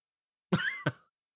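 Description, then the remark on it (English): A single cough with a quick second burst right after, loud and abrupt, with silence on either side and no talking. “Yeah, sorry, I was coughing.”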